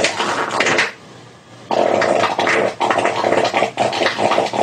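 A loud, buzzy fart with shifting pitch: a short blast, a brief lull, then a longer drawn-out stretch that wavers and changes tone, with no one talking.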